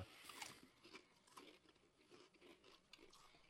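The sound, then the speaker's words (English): Crisp crunching of a spicy potato chip: a sharp bite followed by a steady series of smaller chewing crunches, fairly quiet, with no talking. “It's funny you say that because I've been stuffed up all day and I bit this chip and I was instantly cleared up so I could breathe.”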